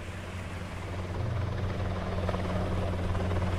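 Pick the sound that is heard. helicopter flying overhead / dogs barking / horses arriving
helicopter flying overhead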